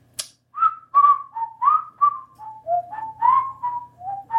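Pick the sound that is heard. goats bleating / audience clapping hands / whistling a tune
whistling a tune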